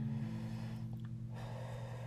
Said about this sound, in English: Let me just pace myself and breathe. You know, the key is all in your breathing.